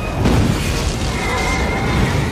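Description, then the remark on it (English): A loud, rumbling explosion of a police car being blown up in a film fills the whole moment, heavy in the low end, with a thin, high squealing tone, like a pig's squeal, threaded through the roar. “Did you notice that when he blows up one of the police cars that it's, like, the sound of an explosion, but also of a pig squealing?”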